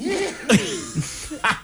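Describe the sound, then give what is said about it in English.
A deliberate, loud cough rings out, signalling that time is up, followed a moment later by a second short cough burst, with brief voiced murmurs between them. “The cough always indicates the time.”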